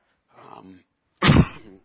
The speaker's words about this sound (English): Forgot to turn off the microphone before I coughed.